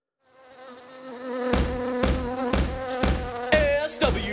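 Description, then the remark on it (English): A steady, droning buzz of a swarm of bees rises up and holds, joined midway by evenly spaced thumping beats about twice a second. No one speaks. “Reviewing bee titles while he's covered in bees.”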